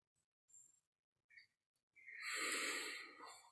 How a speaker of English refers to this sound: When we're not breathing abdominally, we're breathing from the chest, the upper chest. I find myself doing this a lot when I'm nervous. Shoulders raise, just breathing right here.